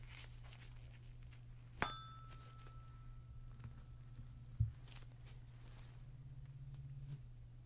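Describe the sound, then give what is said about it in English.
A tuning fork is struck once with a sharp metallic tap. It sustains a clear, steady high ring that fades over a couple of seconds, over a low background hum, with a soft thud afterward. “just gonna use this tuning fork here. And what it does is I hit it, it makes that high ringing sound”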